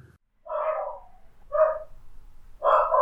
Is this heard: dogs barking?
yes